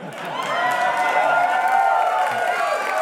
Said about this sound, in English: Any reference to a union has to get full applause.